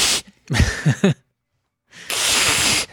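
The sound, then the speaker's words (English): A voice imitates a cat's hiss in sharp, breathy bursts: a short hiss, a few raspy voiced spits, a pause, then one long, loud sustained hiss. “Very cat-like.”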